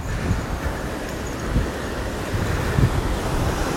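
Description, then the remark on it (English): A steady roar of ocean surf rolling onto the shore at Ventnor, Atlantic City, New Jersey, recorded while walking beside the ocean, with low rumbling swells and wind buffeting the microphone throughout. No one speaks. “We have the beautiful sounds of the ocean. I'm walking right next to the mighty ocean with the mighty sky above.”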